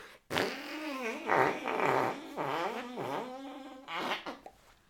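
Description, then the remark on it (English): A person imitates a whoopee cushion with a long, squeaky fart noise that wobbles up and down in pitch for about four seconds, ending in a few short sputters. “That was kind of like a squeaky one.”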